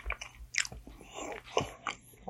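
Chewing with crisp, crunchy bites, several irregular mouthfuls of a Pop-Tart, heard clearly with no talking.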